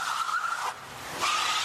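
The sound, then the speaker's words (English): A new Lincoln car being stolen peels away with screeching tires, two loud squealing bursts separated by a brief lull, the engine and road noise filling the gap; no one speaks. “He is stealing The Rock's car.”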